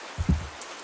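Rain falling, with a soft steady patter and a couple of heavier low thuds of drops landing on a surface. No voices are heard.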